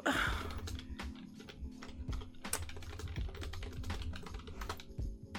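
Rapid, irregular clacking of keys on a computer keyboard, steady for several seconds with no one speaking, with a low hum underneath.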